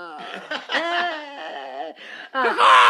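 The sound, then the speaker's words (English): A person imitates a dove's call with a string of wavering, warbly vocal coos that rise and dip in pitch, broken by brief pauses and ending in a breathy, laugh-like burst. “And that's not what sound doves make.”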